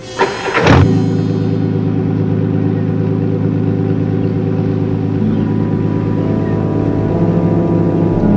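A car engine cranks briefly and catches, starting by itself with no one near it, then settles into a steady, loud idle with a low rumbling hum that continues, no one speaking.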